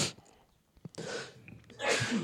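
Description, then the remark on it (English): A close, forceful sneeze bursts out with a sharp intake and noisy exhale, followed moments later by another breathy burst, with no talking in between. “Excuse Bless you. Me.”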